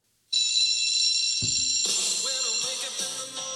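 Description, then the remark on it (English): A loud, continuous electric bell, played from a laptop held up to the microphone, rings without a break, bright and metallic, while lower tones and other sounds join in about halfway through. No one speaks. “Okay, I was almost gonna say Recess because of the bell ringing.”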